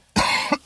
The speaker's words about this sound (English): Sorry for the coughing.